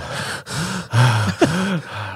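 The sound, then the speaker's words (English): Heavy, rapid mouth breathing from a man, four or five loud raspy breaths in quick succession with slight voiced, gasping edges and no talking. “Count it from his mouth breathing.”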